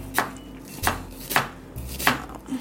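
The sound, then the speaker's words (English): A knife chops through one medium onion on a cutting board while making a pasta sauce, four crisp, evenly spaced strikes with no talking. “And that happens by chopping up one medium onion.”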